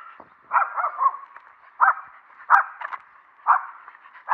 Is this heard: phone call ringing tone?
no